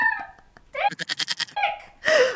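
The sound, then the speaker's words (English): A short, wavering goat bleat cuts in loudly, used like a censor bleep to blur out a swear word, alongside bursts of rhythmic, breathy laughter from people. “You can definitely say dick. The little goat will blur you out.”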